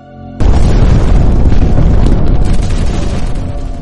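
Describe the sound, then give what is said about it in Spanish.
A sudden, loud explosion bursts in after a brief low hum, a powerful blast shaking the large concrete-and-steel Savoy building, followed by a heavy rumbling roar that sustains and slowly fades over a few seconds. No voices are heard. “El gran edificio del Savoy, todo hormigón y acero, se estremeció y el estallido de una poderosa explosión que llenó nuestro cuarto nos hizo tambalear un poquito y nos dejó zumbando los oídos.”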